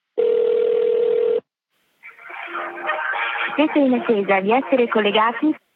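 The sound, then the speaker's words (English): A phone call to the Vatican's office for papal blessings rings. A single steady telephone ringing tone sounds for just over a second, then stops. After a short silence, a voice answers and speaks, slightly thin as if over a phone line. “I phone up the office of Blessings.”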